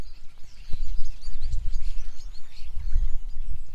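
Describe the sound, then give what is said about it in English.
A starling sings a rambling medley of whistles, clicks and warbles, imitating blackbirds and a buzzard, the varied phrases running nonstop over a low outdoor rumble. “Imitating blackbirds is a buzzard imitation. I mean, that's coming from the starling.”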